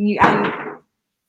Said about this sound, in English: You heard that too? That door was closed. Wait, which door? That door straight ahead of you.